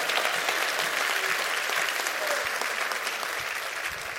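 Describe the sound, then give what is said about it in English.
An audience claps their hands together, a dense, steady wash of applause from many people that holds at an even loudness for several seconds, fading slightly toward the end. “Come on, clap your hands.”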